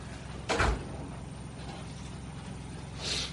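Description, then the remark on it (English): A door shuts with a single soft thud and brief rattle, with some echo, followed by low hum and a faint hiss near the end. “Can you close the door, please?”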